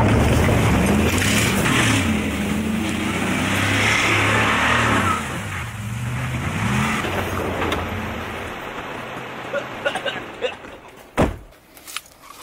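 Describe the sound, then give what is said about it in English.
A truck engine revs and labours as it drives off road through very rocky ground, dragging a gun, its pitch rising and falling, then fades as a few sharp knocks and thumps ring out near the end. “And then they drive the truck off road and drag the gun through like the rockiest areas ever.”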